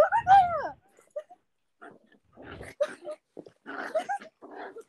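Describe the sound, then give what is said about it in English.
A puppy whimpers and lets out several short, high yips in quick, uneven bursts, fairly loud, with brief pauses between the cries, while biting its owner. “Was that your dog attacking you?”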